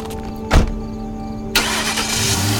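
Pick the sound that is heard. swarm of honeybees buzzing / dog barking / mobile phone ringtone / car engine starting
car engine starting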